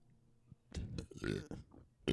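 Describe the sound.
A guttural burp rumbles out over a couple of seconds with voiced, throaty bursts, followed by a short abrupt sound at the end.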